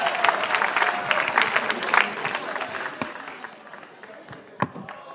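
Dense audience applause with many hands clapping at once, loud at first and gradually thinning and fading, with a few sharper individual claps near the end.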